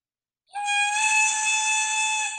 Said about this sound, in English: Oh, just the train horn.